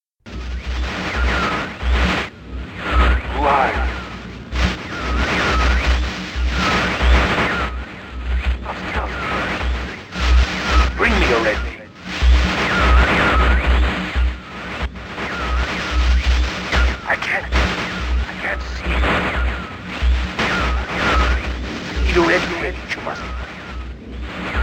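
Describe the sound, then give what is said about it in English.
A distorted, garbled voice message from a red book crackles through thick, harsh static for the whole stretch, with a throbbing low rumble underneath; the words of the vague request are smeared and hard to make out. “Now, instead of pure, unintelligible static, we can make out a vague request. Here's the message from the red book.”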